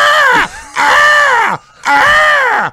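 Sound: voice imitating crows cawing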